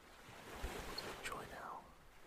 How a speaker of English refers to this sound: Listening to the sound of the waves, feel that cool breeze against your skin.